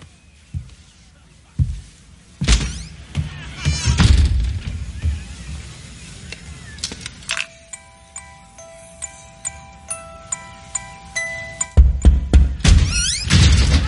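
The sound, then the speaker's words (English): Knocking on a door: a series of dull, irregular thunks, some louder than others, joined partway through by sustained ringing tones and a busier clatter near the end. “How many times do I have to tell you to knock? Knock!”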